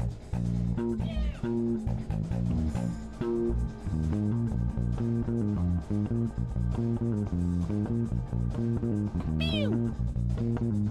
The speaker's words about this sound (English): Let's get this cat meowing.